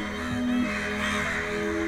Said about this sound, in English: Oh, and there are hundreds of birds. Hundreds and hundreds of them.